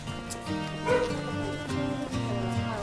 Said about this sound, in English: I think the dog is going crazy. That's fine.